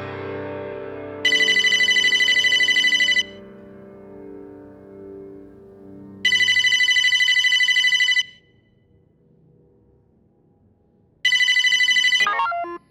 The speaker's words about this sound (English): But first, it appears that someone is making a phone call to the former home of